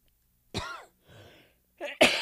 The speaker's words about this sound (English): But I have this dry cough.